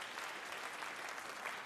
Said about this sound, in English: You put very, very interesting things into this debate, so I want to give yourselves a round of applause for that, because you really did.